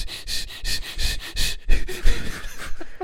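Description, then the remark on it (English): A voice imitates a drone air purifier robot sniffing the air after a fart in a living room, with a rapid series of short, loud, breathy sniffs and snorts repeating. “Can you imagine sitting in your living room and letting a fart rip and having a robot come over right next to you and start breathing?”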